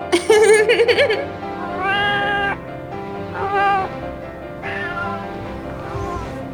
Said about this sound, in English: Aw, kittens.